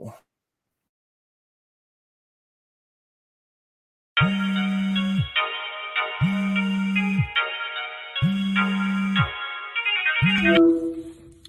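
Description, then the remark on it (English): A phone rings loudly and alone with an incoming call from a caller, in a repeating pattern, with strong low pulses under a bright melodic tone, about four rings before it cuts off. “Let's see who's hitting the vibe line, who's calling the phone, all that goofy shit, right?”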